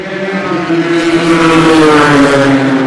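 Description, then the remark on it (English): A loud race car engine, the Team Midland car, roars past, its strong buzzing harmonics holding steady and then shifting slightly in pitch as the car goes by. No one speaks. “There goes the Team Midland car.”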